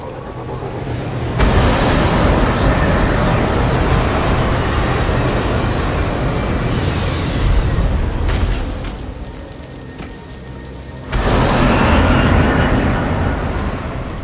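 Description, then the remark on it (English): Video game grenade launcher explosions: loud, broad booming blasts that start abruptly, rumble for several seconds, dip briefly, then burst again near the end, with no talking. “I'm going to use the grenade launcher.”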